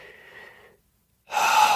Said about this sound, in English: So breathing in, belly and chest with a slight arch in your back.